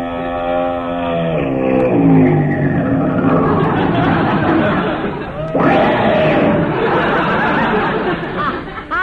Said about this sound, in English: that looks like Mrs. Bob Orpington's big long limousine coming this way